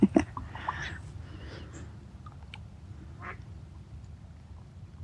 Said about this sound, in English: I thought the duck was stressed by me being here, but perhaps the duck was telling the rest to hurry up.